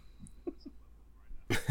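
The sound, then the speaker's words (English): A single short, harsh cough bursts out near the end after a quiet stretch with a few faint small noises, fairly loud, like someone clearing their throat. “Anything to clear my throat.”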